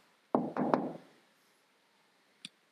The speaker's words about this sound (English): He's at the door for some of you today, and he's knocking.